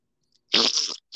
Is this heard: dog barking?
no